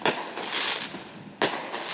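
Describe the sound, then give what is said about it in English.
Two sharp firework blasts go off outdoors in a neighborhood about a second and a half apart, each followed by a hissing, crackling tail that lingers in the open air; no one speaks. “And then it was just a firework.”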